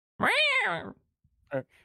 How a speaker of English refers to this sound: Somewhere to the north, you hear a cat yowl.